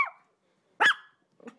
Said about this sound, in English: And speaking of pets, here comes the dog.